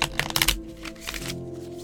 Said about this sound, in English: We're on week 3 of 54, drawing a card of the week from the Moody deck. Without further ado, I shall shuffle the cards.